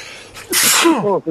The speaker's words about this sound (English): Did you hear me sneeze? I got the sugar boogers.